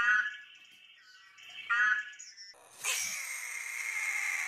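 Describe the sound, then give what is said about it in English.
A Pac-Man frog gives a couple of squeaky, whining croaks, then breaks into a long, harsh, buzzing scream that holds steady to the end, loud with no talking. “Here's what a Pac-Man frog sounds like.”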